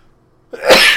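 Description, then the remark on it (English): A single loud sneeze bursts out after a half-second of near silence, a sharp intake followed by a harsh, hissy explosive release. “Woo, that was a good sneeze.”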